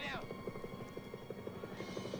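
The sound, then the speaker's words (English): An American Huey helicopter's rotor thumps in a steady, rapid rhythm with a loud engine whine underneath, continuous throughout, with a brief high sweep at the start, heard in a film. “That's an American chopper. That's a Huey.”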